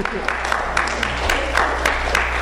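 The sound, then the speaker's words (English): An audience at a poetry reading applauds after a poem, a steady wash of many hands clapping with scattered sharper claps standing out, holding a fairly even, moderate loudness throughout. “Some places we clap after every poem, and some places we don't.”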